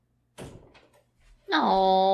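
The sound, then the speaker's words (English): A door is opened with a short clunk of the latch and a brief rattle to let Leon the dog out, followed by a loud, sustained vocal tone from someone. “Let me let Leon out. He's waiting at the door here.”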